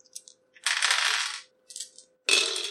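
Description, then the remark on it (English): Dice from half of a player's dice pool, thrown in a tabletop game, clatter across a hard table in a few bright bursts, with two longer rattling rolls separated by short clicks and pauses. No voices are heard. “He's going to use half his dice pool. So take out 6.”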